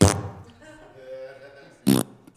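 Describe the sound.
Two short, loud blown raspberries, a wet, buzzing fart noise made with the mouth as a thumbs-down toward the Church of the Flame. A quieter droning buzz sits in the gap between them.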